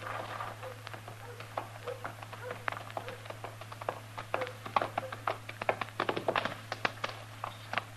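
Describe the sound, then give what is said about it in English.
Hooves of two horses coming out of a stable clip-clop in a steady, uneven stream of sharp knocks that grow denser and a bit louder toward the end, over a low constant hum, with no clear speech. “They're coming out of the stable over there. Well, what's he got two horses for?”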